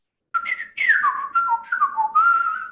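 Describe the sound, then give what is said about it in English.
A man whistles a short, lilting tune to call a bird, gliding mid-high notes that rise and dip for a couple of seconds, loud and clear with no talking over it. “And then a bird comes over, did a little lands on this street.”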